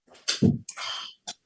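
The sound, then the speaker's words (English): A pet dog moving in and out of the room during a recording, making a few irregular breathy, scuffling bursts with a low snort-like thump among them, moderately loud with no one talking. “And joining me today is my dog in the background. As you can hear my dog moving in and out.”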